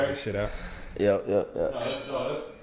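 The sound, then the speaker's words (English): Glasses clink together in a toast, a few bright chiming taps ringing out, mixed with murmured voices and tableware clatter. “I mean, let's do a not, cheers. So it's less to edit out.”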